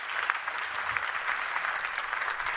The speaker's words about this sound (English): Would you just give them a round of applause one more time?